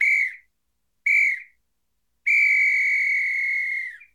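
A referee's whistle signals the end of a game with two short sharp blasts followed by one long sustained blast, loud, with silence between and no talking.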